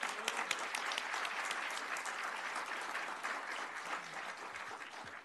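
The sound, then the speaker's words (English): Steady applause from a crowd at an oath of office ceremony, given for the pastor who administered the oath, a dense crackle of many hands clapping at even loudness for several seconds, with no voices rising above it. “Please give him a round of applause, if you will.”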